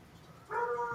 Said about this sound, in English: And the dogs are barking.